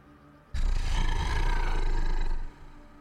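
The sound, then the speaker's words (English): A deep, rumbling dog growl starts abruptly and holds steady for about two seconds, loud, with rich low tones and a rough, snarling texture before cutting off. The dog is on a cobbled street. “Yeah, I think you manage to shift its leg, like its paw scrapes along the cobbled street, and you watch the full hindquarters of this dog come into the light, and you just hear a very dark, deep.”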